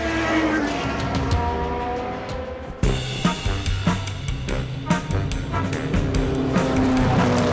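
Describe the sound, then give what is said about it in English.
Race car engines roar loudly and continuously at close range, their pitch wavering as cars drive around a track, with sharp bursts and a possible tire squeal partway through. “If you want to watch race cars all day, as close as you can get to them without being in the driver's seat and spending money, come out here and we'd love to have you.”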